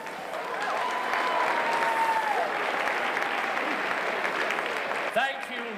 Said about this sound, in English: show some exuberant veneration in the form of applause for Mad Theatre Group